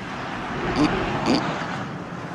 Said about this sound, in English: he's got this weird, like, twitch, you know, …, when he gets done talking, kind of like a snort